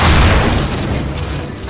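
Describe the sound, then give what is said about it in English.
A loud, heavy crash of an engine falling out: a booming, rumbling burst of clattering metal that stays dense and noisy for the whole couple of seconds, with no voices. “And why have we stopped moving? The engine's fallen out.”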